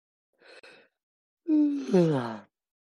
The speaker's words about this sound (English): That was a very convincing yawn.